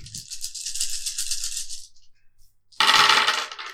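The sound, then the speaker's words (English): Dice rattle steadily in a cupped hand for about two seconds, go quiet for a moment, then land in a loud, sharp clatter as they are thrown to see the score. No one speaks. “Just roll to see what the score is.”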